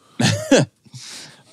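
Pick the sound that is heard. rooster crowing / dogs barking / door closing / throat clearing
throat clearing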